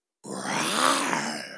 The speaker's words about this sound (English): So ring that buzzer. It sounds like a lion roar.